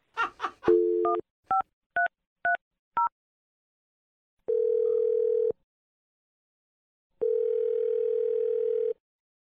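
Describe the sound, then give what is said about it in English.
A phone number is punched in: a brief dial tone, then five quick touch-tone beeps at varying pitches, followed by two long, steady ringback tones separated by silence. “I'm going to dial the number, and you can make your awkward Tuesday phone call.”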